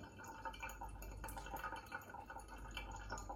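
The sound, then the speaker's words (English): Water trickles steadily through coffee grounds in a pour-over funnel into an insulated jug, a soft, continuous gurgling with scattered drips and splashes. It is fairly quiet, with no voices. “So what you want to do is to keep the water moving within the funnel and the coffee grounds are up floating around within that water, and you can hear it filters through relatively quickly.”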